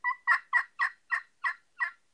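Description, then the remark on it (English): An anodized Ninja slate friction call imitates a turkey to make turkeys gobble. It gives a run of seven sharp, high-pitched yelps in a steady, even rhythm. The yelps are fairly loud, with no talking. “Hear that real high pitch. Almost hurt your ear type yelp.”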